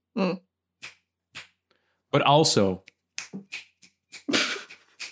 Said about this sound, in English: I'm snapping, but not like poetry reading and clapping.